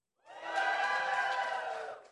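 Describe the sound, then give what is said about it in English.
An audience breaks into loud cheering and shouting in excitement for God's word before a morning reading of Psalm 84, a dense burst of many voices that rises quickly, holds for about two seconds, then fades off. “And why do we cheer?”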